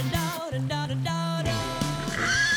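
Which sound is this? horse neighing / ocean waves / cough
horse neighing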